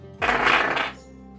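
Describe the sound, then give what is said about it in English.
Metal dice clatter across a hard table in a quick, bright rattle lasting under a second, fairly loud, then settle into quiet; they are rolled for a climb roll in a game. “So I'm going to pull out my special metal dice for this ever-important climb roll.”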